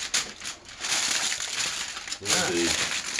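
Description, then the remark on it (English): Loud crinkling and crackling of foil being crumpled, continuous for a few seconds, with a voice briefly speaking over it near the end. “If you hear that crackling noise, that's foil.”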